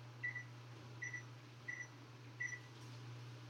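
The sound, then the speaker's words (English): Four short electronic beeps from an oven keypad at an irregular pace, as the oven timer is set for 20 minutes for potatoes roasting on a baking sheet, over a steady low hum with no talking. “But I'm going to set the timer for 20 minutes.”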